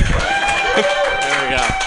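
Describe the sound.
Steady, dense applause from a comedy club audience clapping for the show's host, a continuous wash of many hands clapping at an even level, with some voices mixed in among the crowd.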